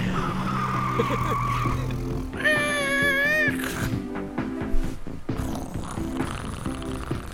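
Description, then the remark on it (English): A van rumbles as it pulls up, then its tires let out a loud, wavering screech for about a second as it skids to a stop, with a steady low drone running underneath. “I got the signal that your scooter broke down, so I brought the van.”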